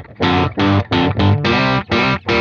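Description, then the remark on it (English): A loud, distorted electric guitar played through an amp with the reverb taken out strikes seven chunky chords in a steady rhythm, dry, with no voices. “So if you put it all the way up, then it's tone stack completely gone.”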